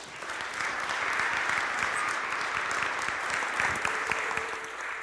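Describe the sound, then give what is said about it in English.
A steady round of applause from a crowd at a Christmas Eve church service, welcoming a writer and a visual artist, dense overlapping claps holding at an even, fairly loud level for several seconds before easing slightly at the end. “And so would you please welcome and put a round of applause together for our friends”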